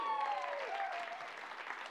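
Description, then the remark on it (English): An audience at a Communicators Sunday gathering claps steadily, a dense wash of hand claps that holds at an even, moderate level for the full two seconds, with a faint voice tone briefly riding over the start. “You can clap for that.”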